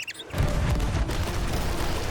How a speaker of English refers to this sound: Oh my god, the Dutchman is coming in. Well, I believe that now is the perfect time to use these cannons.